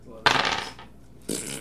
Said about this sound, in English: The sound of my dice.